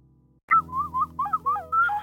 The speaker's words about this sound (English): That's the high-pitched ocarina, not very friendly for poor old little dogs.